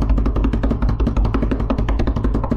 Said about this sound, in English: What's that weird little noise? That was supposed to be like applause, eruption of support from all my boys out there.